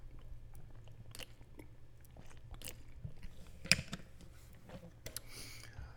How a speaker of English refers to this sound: excuse me, I will, hold on, let me take some water, y'all, because this shit's spilling out of me. Hold on.